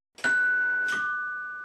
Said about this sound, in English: Oh, it looks like we have a visitor. Let me just go get him. Let me go. Stop wrecking the doorbell. I'm coming. Stop wrecking the damn doorbell.